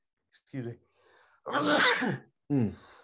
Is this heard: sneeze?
yes